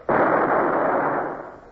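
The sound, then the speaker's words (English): A single loud shot from a ship's cannon, fired at an oncoming rowing boat: a sudden sharp blast that swells into a broad roaring boom and slowly rumbles away over a second or so. No voices. “I stared through the gun sight straight at its bows, jerked the lanyard, and fired.”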